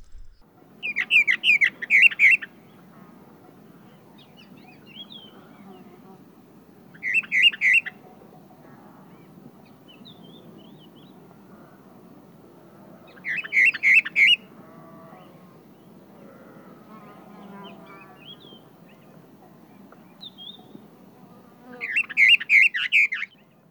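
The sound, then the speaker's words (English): A Western Orphean Warbler sings four short, clear phrases of warbling song, each separated by several seconds of pause, standing out over a soft, steady low rumble in the background; recorded in May 2009. “We ought to perhaps hear a little bit of Western Orphean Warbler, so yeah.”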